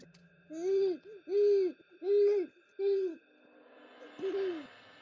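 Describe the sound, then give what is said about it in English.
A person mimics an owl with four steady, evenly spaced hoots, then a softer fifth hoot after a short pause, alone without talk. “Sound like an owl.”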